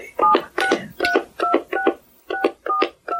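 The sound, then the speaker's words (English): Telephone keypad tones dial a registered 10-digit phone number into an automated phone service: a quick run of about eight or nine short dual-pitch beeps, each a separate key press, fairly loud and clear with no talking. “Please enter the 10-digit phone number with which you register.”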